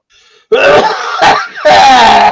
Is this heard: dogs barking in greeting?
no